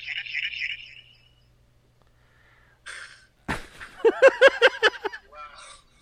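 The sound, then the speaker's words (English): Tinny, phone-filtered voices come through with a delayed, echoing quality: a short hissy burst, then a louder, choppy stretch of overlapping voice that fades out near the end. “I had to switch in on my phone, and it's playing near.”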